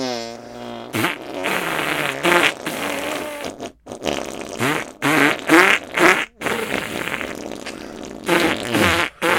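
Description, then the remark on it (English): A string of wet, squelchy arm farts played in rhythmic bursts, varying in pitch like a silly tune, with a sustained hummed or sung tone at the start. “I like to say goodbye with musical arm farts.”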